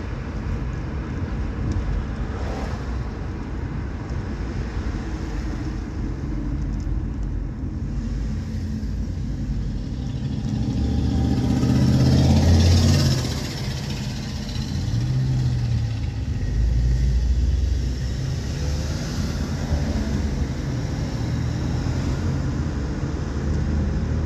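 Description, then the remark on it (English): A steady low engine rumble from an idling car in city traffic, swelling briefly as traffic moves around it, with the muffled drone of city traffic filling the background. “This is way too much traffic for me.”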